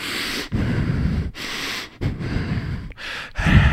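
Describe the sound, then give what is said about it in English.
A voice imitates a man sitting up and breathing hard only through his nose with his mouth shut: several loud rasping snorts in a steady rhythm with brief pauses between them, with no talking. “But he sits up and he's just breathing hard, just out of his nose. His mouth is shut.”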